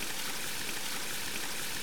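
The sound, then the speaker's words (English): A steady, unbroken trickle of running water from a small water feature in a landscaped courtyard, a soft hissing splash that stays constant throughout, with no voices. “Because I guess your old coaching inn wouldn't have had a landscape courtyard with a water feature.”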